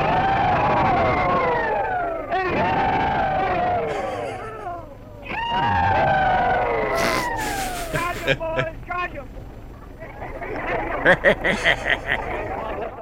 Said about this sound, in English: you will hear a group doing it, and then just one guy. So let's hear the rebel yell. Ladies and gentlemen, I have the pleasure of announcing to you that we are going to make an effort to repeat the old rebel yell.